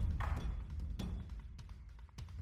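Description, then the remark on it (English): Hail striking a building: irregular thuds and sharp taps land every fraction of a second over a steady low rumble, fairly quiet overall, with no voices. “I'm going to go check the hail. It sounds really bad.”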